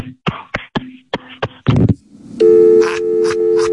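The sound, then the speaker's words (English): A burst of sharp clicks and clattering thumps, like a phone handset being fumbled, gives way to a loud, steady electronic tone with a pulsing edge, a call cutting off into a disconnect signal. “I think your ass meat hung up the phone.”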